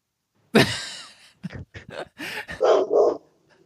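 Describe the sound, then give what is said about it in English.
A pet dog barks in a quick series of sharp, loud yelps and whines, about six bursts over a few seconds with short gaps, nobody talking over it. “Oh, that's your actual dog.”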